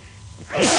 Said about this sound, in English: is sneezing